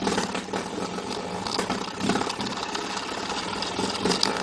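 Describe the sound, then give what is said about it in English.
A spring door stopper being batted by a cat, giving a continuous rapid buzzing twang with shifting vibrato, fairly loud for several seconds, with no voices. “The answer is a cat playing with a door stopper.”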